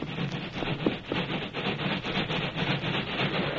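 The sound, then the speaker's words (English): A steam train engine chugs steadily in a fast, even rhythm of breathy chuffs, a continuous rumbling clatter at a fairly constant loudness with no voices. “Here come engine.”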